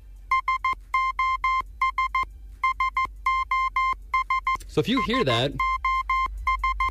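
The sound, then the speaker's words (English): Steady electronic tone beeps tap out Morse code SOS, quick short pulses alternating with longer ones in repeating groups. A voice briefly speaks over the beeping midway through. “SOS is adopted as the international distress signal, replacing CQD. Here's the Morse code of the SOS.”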